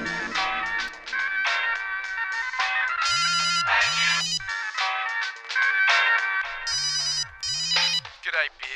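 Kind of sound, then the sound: signal or alarm, phone ringing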